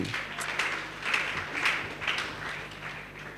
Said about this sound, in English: Clap your hand for Jesus.